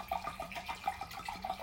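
Liquid glugs steadily into a glass, a fairly quiet pour with a quick rhythmic gurgle running throughout and no voices.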